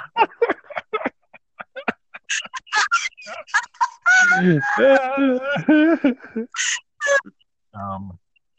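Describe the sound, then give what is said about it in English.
Chickens cluck in quick, choppy bursts, then a rooster lets out a long, wavering crow, followed by a few more scattered clucks and squawks. “Just go over there and look at the chickens.”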